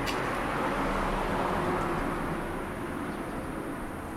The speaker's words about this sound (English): They get so much joy from riding a car, a bike, a motorbike, making as much noise as possible. The louder, the better.